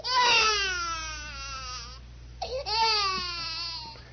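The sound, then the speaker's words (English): A baby crying sound effect: a baby wails in two long, high-pitched cries with a wavering, harmonic tone, broken by a brief sharp gasp between them; loud and alone, with no talking over it. “Cue baby crying and sound effect here.”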